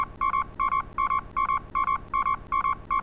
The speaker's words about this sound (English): I'm going to beep that out.